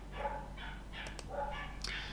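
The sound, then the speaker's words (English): Dogs barking at night in a quick, repeated series of sharp yaps, faint over a steady low hum, with no talking. “I've never had a night like this where the dogs are just going crazy.”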